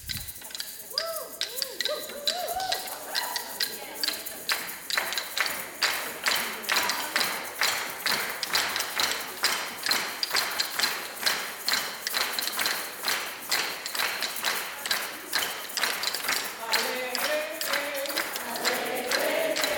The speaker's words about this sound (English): Now, I'm going to ask you to play your maracas and bang those sticks